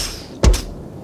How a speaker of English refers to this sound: I'll just knock on the old front door.